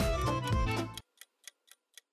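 A timer ticking: after a loud sustained tonal sound cuts off, five crisp, bright ticks follow at a steady, quick pace with silence between them.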